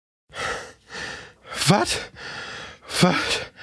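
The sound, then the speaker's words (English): Heavy, exhausted panting after climbing up steps: a steady run of loud, breathy in-and-out gasps, a couple of them catching into voiced, groaning breaths, with no words spoken. “made it up the steps and out of reach of the nearby plants, the two collapsed in exhaustion, panting.”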